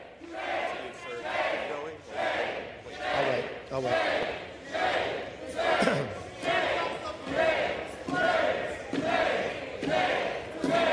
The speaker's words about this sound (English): The irony of the lack of decorum by the Democrats to shamelessly yell shame as a very shameful Adam Schiff is censured is absolutely mind-boggling.